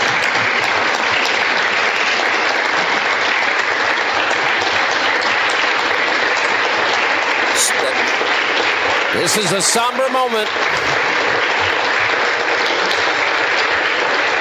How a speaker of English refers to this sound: Very prayerful, too. I heard a lot of prayer in the clapping.